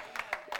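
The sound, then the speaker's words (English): Sparse, light applause from a small audience: a handful of scattered, uneven claps spread across a brief moment, fairly soft, with no voices over them. “And but so much more than just your small applause.”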